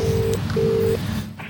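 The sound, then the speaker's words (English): Two steady electronic keypad tones as a phone is dialed to call a friend, one short and one longer, with a brief gap between, clear over a low background hum. “You're about to phone him? I am.”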